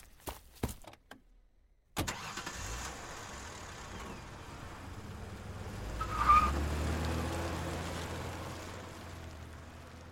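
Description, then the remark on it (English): A few sharp clicks, a brief pause, then a car engine catches and settles into a steady rumble, revving up as the driver flees and the car pulls away. No talking. “I just got in my car and fled.”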